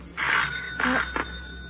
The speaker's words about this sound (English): The doorbell. Here's the doc, Miss Kay. He brought the sheriff with him.